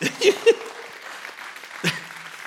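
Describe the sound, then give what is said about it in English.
An audience breaks into brief, scattered clapping, a few louder bursts standing out over a steady patter of hands, with a faint vocal whoop near the start. “You're going to clap.”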